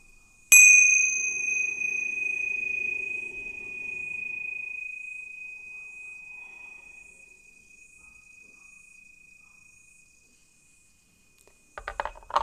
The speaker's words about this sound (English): Let's all take a breath as we listen to the Thich Nhat Hanh bell again.